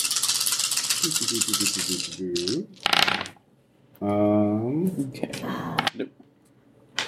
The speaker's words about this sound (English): So go ahead and roll 7 dice again.